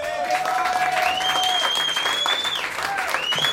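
An audience claps steadily for several seconds, a dense, even wash of hand claps at constant loudness, with a few long whistling tones gliding above the applause.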